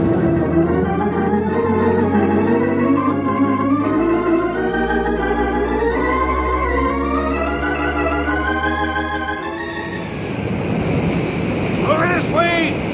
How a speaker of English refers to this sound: Wait, it sounds it like... It is! It's oil! A gusher! It must have been broken through by itself.